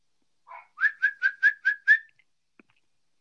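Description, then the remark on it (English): A person whistles a quick series of six short, even chirps in a steady rhythm to call a pet, fairly loud, with no talking around it. “Sometimes you just got to say your name and whistle at her for her to, like, realize everything's going to be okay.”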